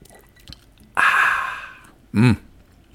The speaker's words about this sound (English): Take a sip of the old burbs here.